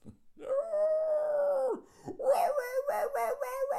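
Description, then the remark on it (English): A person imitates a beaver howling at the moon: one long, sustained wavering howl, a brief breath, then a second, choppier howl broken into pulsing bursts, loud. “Fucking this big buck-toothed fucking beaver howling at the moon.”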